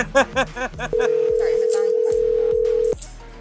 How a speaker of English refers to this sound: You can hear the phone vibrating on the stream now.